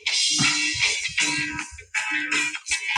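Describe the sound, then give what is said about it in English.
A cell phone ringtone plays a rock song, loud and dense with distorted, guitar-like tones that pulse in a steady repeating rhythm, with no voices over it. “Whose goddamn cell phone is that?”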